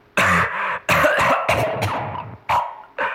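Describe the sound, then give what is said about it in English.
A loud fit of harsh coughing, several hacking bursts in quick succession with brief gaps between them, ending in a couple of sharper single coughs; no one speaks. “There was a spate of coughing.”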